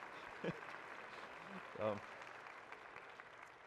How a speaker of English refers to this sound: You can go ahead and be seated. All right, sweetheart. Can we applaud that, right?